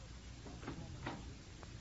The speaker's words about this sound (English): I open door.